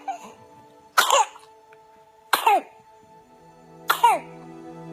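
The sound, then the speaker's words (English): A newborn baby, a few days old and with whooping cough (pertussis), coughs in three separate harsh fits, spaced about a second and a half apart, each trailing into a strained, squeaky gasp, with a faint steady hum underneath. “who started to cough a few days after he was born.”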